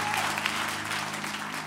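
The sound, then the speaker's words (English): A church audience claps hands together as loud as they can at the preacher's call, a dense, steady wash of applause with no distinct individual claps, holding at an even loud level for the whole stretch. “Clap your hands as loud as you can.”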